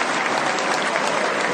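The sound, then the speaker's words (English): Steady, dense applause from friends, supporters and members of the media as Judah Maccabee enters the Great Hall, a continuous bright crackle of clapping that holds at an even, fairly loud level throughout with no voices. “He's being applauded by friends, supporters, and even some members of the media.”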